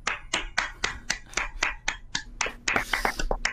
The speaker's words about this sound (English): Why are you clapping?